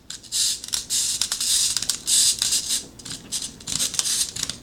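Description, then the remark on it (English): A mechanical pencil sharpener being wound: a continuous run of dry, raspy grinding bursts repeating unevenly, bright and scratchy in tone, with no voices over it. “You can't really use it while you're winding.”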